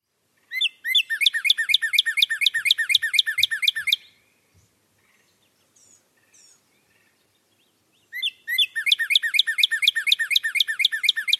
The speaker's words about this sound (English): So that was the Northern Cardinal song.